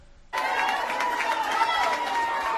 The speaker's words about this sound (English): Yeah, so it's basically a sea of blue there. An absolute sea of Dublin fans clapping, standing on their feet, supporting the Dubs.